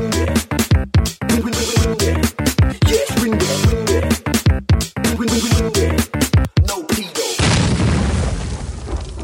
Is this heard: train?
no